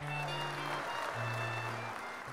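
A short burst of steady, cheerful on-air clapping from a small group, an even, continuous patter of hands lasting a couple of seconds, with a faint low hum running underneath.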